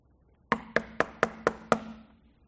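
Six quick, evenly spaced knocks on a wooden front door, fairly loud, each with a hollow resonant thud that rings briefly before fading. No voices are heard.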